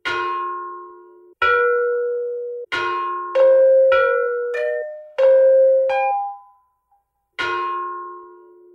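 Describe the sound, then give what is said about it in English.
Ancient ceremonial bells, of the same style as a set held at the Smithsonian, struck one after another: about eight clear metallic strikes at several different pitches, each ringing out and fading, some overlapping, fairly loud with no talking. “I found one set of bells that are not these particular bells, but they're the same style of bell that are at the Smithsonian.”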